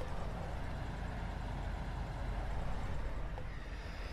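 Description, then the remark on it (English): A steady, loud roar of highway traffic and trucks rushing past a rolled-down window of a truck on the highway, with deep rumbling engine noise and constant wind-like hiss and no pauses. “Listen to the sound of the highway.”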